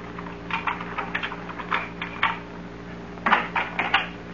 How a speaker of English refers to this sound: Thought I heard footsteps outside the house. Footsteps? Just listen.